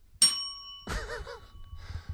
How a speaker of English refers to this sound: Ding! Hit the bell.